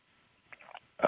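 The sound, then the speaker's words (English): A quiet, wet gulp of swallowing with a few soft mouth clicks, then a sudden louder breathy burst right at the end. “I heard that gulp.”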